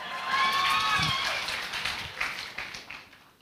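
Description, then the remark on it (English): A church audience gives itself a burst of clapping, a dense, fast patter of many hands that peaks early with some higher cheering tones, then gradually thins and fades. “Hey, give yourself a clap, lah.”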